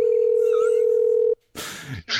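A loud, steady phone line tone hums for just over a second after a caller is hung up on, then cuts off abruptly, followed by a brief silence and two short bursts of harsh, hissy noise.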